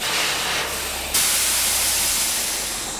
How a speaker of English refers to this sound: An 18-wheeler backs into the loading bay of a concrete building 45 minutes south of the Arizona border.